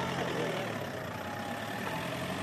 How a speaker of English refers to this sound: A family car pulls up.